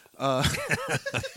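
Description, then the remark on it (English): A person blows a short, buzzy fart noise with their mouth, a quick raspberry imitation, followed by brief voiced sputtering, moderately loud. “That fart is actually legally included when you say the name.”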